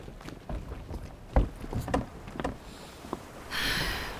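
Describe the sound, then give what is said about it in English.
A rowing boat moves through water with a series of wooden knocks and creaks, then a steady rush of splashing water swells near the end. No one speaks. “a boat.”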